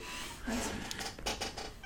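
A cat meows, a short drawn-out call followed by softer chirping sounds over a faint background hiss, with no clear talking.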